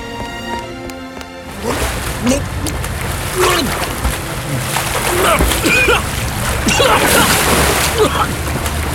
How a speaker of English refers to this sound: He's jumped in the bloody river! Well, he'll drown in there! Or poison himself, the water's filthy.